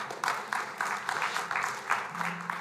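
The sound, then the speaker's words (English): A crowd claps steadily during a church sermon, the dense applause carrying a loose pulsing rhythm of overlapping hand claps at moderate loudness, with no one speaking over it. “Yeah, you can clap.”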